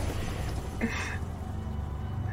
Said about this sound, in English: Oh, and that was a helicopter.